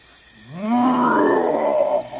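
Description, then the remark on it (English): A single deep, loud lion roar swells up from a low rumble, holds strong for over a second, then fades off, heard alone. “He threw his head back, showing his sharp teeth, and roared very loudly.”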